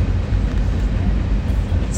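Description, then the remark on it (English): A very long train rumbles past, a loud, steady low roar that holds without a break for the whole stretch, with no clear individual clacks standing out. “It's a very long train.”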